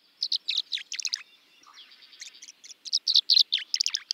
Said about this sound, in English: A flash of glittering dark blue cuts through the gray of late February as a male tree swallow glides low over a cattail marsh. The tree swallow's liquid notes hint at spring's approach.